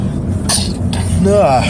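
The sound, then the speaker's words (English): A sneeze: two quick, hissy bursts of breath, followed by a short wavering voiced sound, all fairly loud over a steady low background hum. “I gotta sneeze.”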